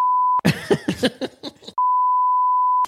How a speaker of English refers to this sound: I need to bleep that out. Yeah, I'm going to bleep sniffles out as well.